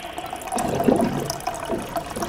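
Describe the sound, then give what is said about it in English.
Water pours steadily from a water cooler into a cup, a continuous gurgling splash with a faint rising fill, lasting a couple of seconds with no talking. “let's grab a cup of water and talk here at the water cooler.”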